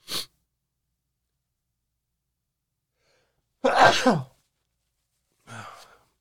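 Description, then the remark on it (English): A single loud sneeze bursts out of near silence, followed a moment later by a softer breathy exhale; a faint short click comes at the very start. “Bless you.”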